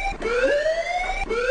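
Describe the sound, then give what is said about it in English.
A loud panic alarm blares, its electronic tone sliding steadily upward in pitch, then dropping back and starting the climb again, with bright harmonics and no voices. “Panic alarm has been sounded.”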